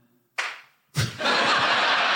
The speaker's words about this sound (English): One clap, fantastic. Hard not to take it personally.